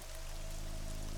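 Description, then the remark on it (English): Steady acid rain pours down in a dense, continuous, unbroken hiss, with a faint low hum running beneath it and no voices. “Rain. Oh God, it burns so bad!”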